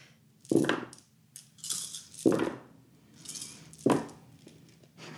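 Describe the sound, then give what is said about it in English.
A large handful of dice is rolled, clattering and rattling across a hard surface in three distinct bursts, fairly loud, with lighter scattered clicks between them as one die is dropped, and no talking. “Oh my gosh, that's so much dice. I dropped one.”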